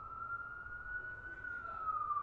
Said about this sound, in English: I think another ambulance is coming. Hold on.